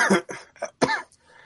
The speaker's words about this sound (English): God, stupid coughing.